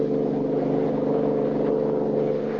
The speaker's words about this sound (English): Finding Lois and the bill of sale missing, he and Kelly give chase in a high-powered car.